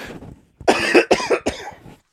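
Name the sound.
cough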